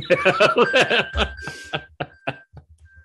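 A smartwatch find-my-phone alert rings as a steady, high electronic tone, sounding under laughter and sharp tapping knocks, then briefly returning at the end.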